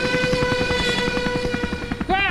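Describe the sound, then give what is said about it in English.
An attacking helicopter's rotor, flown over an island, chops in a fast, steady rhythm under a constant high whine, staying loud throughout before a brief rising, swooping tone cuts in at the very end. “You'd think they wouldn't give anyone a helicopter because they could fly away from the island, and yet that 15-year-old is very clearly flying one.”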